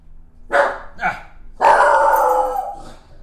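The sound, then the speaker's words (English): Two short, sharp barks from a dog, followed by a longer, drawn-out bark that trails off. Loud, with no other sounds around it. “Don't you think when the dog like barks at like random stuff in the house, don't you think the house might be a little haunted?”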